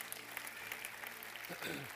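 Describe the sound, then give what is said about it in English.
An audience claps their hands to the Lord in a morning church service, clapping steadily for a couple of seconds, a dense wash of many hands, with a voice briefly rising underneath near the end. “Let's clap our hands to the Lord this morning.”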